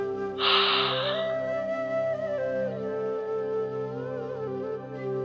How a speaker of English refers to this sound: To prepare for ujjayi pranayama, close the lips and begin to breathe in through the nose and out through the nose. As you do this, you will create a sound in the back of your throat. The sound will sound like you're fogging up a mirror.